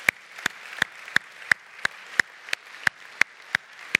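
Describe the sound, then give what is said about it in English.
Steady, evenly spaced hand claps, about three per second, ring out sharply over a soft background hiss, keeping a regular beat as an audience claps in unison for a group of middle school students. No one speaks. “Can we just give them a big round of applause?”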